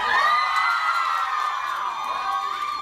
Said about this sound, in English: It is Greek week. There's a lot of Greeks in the audience. I hear a cheer for Delta Zeta.